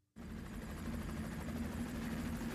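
A helicopter's rotor roars in suddenly after a brief silence, a loud, steady whir with a rapid low thudding pulse and engine hiss, continuing without any voices.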